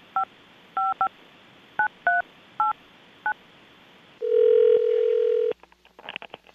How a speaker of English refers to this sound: Do you want to hold the line for a moment? And I'm going to dial them up.